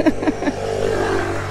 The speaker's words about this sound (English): A little moped Vespa just cruised on past. The guy did have a helmet on, interestingly enough.